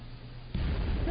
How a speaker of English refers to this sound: That almost pasted my biscuit. Was that explosion loud enough? I always wonder sometimes if the explosions are loud enough. I try to make them, like, really loud. So that, you know, especially those one-offs, so they'll really jar people.